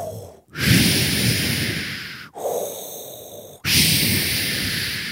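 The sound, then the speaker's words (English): A voice imitates heavy, menacing breathing: three long, rasping breaths, each separated by a brief pause, loud, with no talking. “The worst part is the breathing.”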